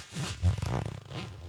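A clothing zipper is pulled in a quick rasping run, with a short second pull toward the end; no one speaks.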